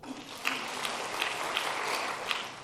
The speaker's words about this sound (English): Okay. So if I say clap seven times, if you can hear me.